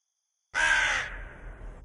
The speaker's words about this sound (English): Somewhere in the distance, a crow called out, an echoing sound that raised the hair on her arms.